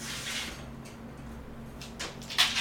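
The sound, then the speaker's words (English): A door slides open with a low steady hum in the background, ending in a short rattling clack, as it is opened to let a dog out. Nobody speaks. “Okay, I just opened the door.”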